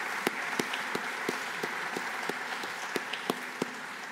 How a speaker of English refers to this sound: Perhaps you'd give them a quick round of applause to thank them for accepting this invitation and nomination.